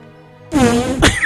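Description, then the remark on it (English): A short, buzzy mouth-made fart sound blurts out loud after a brief quiet hum, wavering for under a second with a sputtering burst near the end. “That was not a good fart note.”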